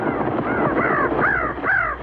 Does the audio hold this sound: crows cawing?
yes